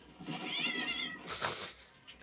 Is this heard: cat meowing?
yes